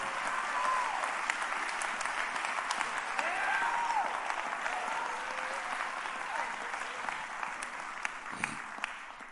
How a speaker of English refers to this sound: Come on, clap your hand to the Lord.